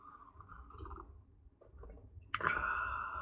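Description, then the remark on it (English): Someone sips coffee: a couple of soft clicks and shuffles, then a sudden airy slurp that holds for nearly a second, fairly quiet and with no talking. “I'm gonna take a quick coffee sip break.”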